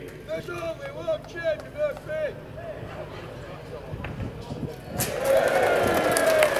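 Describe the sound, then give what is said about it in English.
A voice speaks over a murmuring crowd, then a loud wash of applause and cheering breaks out at the unveiling of the Jimmy Murphy statue at Old Trafford and holds steady through the end. “Come on, a nice round of applause, ladies and gentlemen.”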